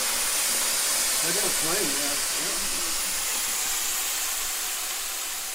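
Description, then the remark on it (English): A vacuum cleaner used during chimney sweeping runs with a steady, loud airy roar that holds unchanged from start to finish, while a voice or two briefly murmur faintly beneath the noise. “Keep the vacuum.”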